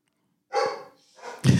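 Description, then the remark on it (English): A pet dog barks, two or three sharp barks in quick succession with a short gap between them, loud and clear with no talking over them. “Like, I will bark at you.”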